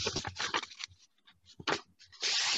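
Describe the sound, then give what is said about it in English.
Crisp rustling and crinkling of paper in a few bursts, with a sharp crease-like swipe near the end as a sheet of paper is folded in half; no voices. “And what I did was I folded the paper in half.”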